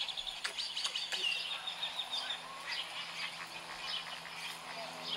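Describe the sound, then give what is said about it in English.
A dense stream of strange, varied bird calls, chirps and squawky sounds overlapping continuously, with sharp high notes popping out over a steady background chatter. “Anyway, so folks, I present to you the weird... freaking bird noises.”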